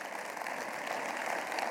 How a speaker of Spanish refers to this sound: Aún en esa condición, está conmigo hoy día, un aplauso al Señor por ello.